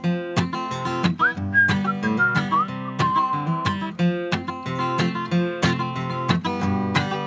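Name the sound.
whistled melody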